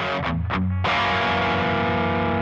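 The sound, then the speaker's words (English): A heavily distorted hollow-body electric guitar growls through a couple of quick choppy stabs, then slams into a loud, sustained, fuzzy chord that rings out thick and saturated with no voices. “It takes distortion really well, aside from the fact that it can feed back if you get too hot, too high gain, since the open body starts resonating with the amp, and you can get some pretty nasty feedback loops, or some pretty cool feedback loops”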